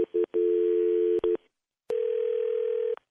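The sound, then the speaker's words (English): A steady electronic phone line tone hums, broken by a few sharp clicks, cuts out for a moment, then returns as a long clear buzz before stopping abruptly. “Okay, it's ringing.”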